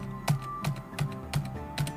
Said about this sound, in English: There we go. A 12! Dice roll.